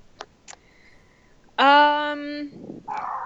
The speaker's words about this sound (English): Oh, man. So, see, now the other neighbor's dog came out. That's a yippier dog. Yeah, they're all reapies.